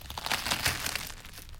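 Mystery crisps crunched right up against the microphone for a guess-the-crisp quiz, a loud, dense run of crackly, brittle snaps lasting over a second with no voices over it.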